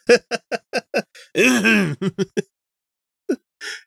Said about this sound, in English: So, and then, he ends it with a cough.